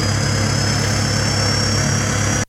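A loud, modified diesel engine drones steadily as its turbo spins up, a thin high whine riding above its rumble, holding constant for a couple of seconds before cutting off abruptly.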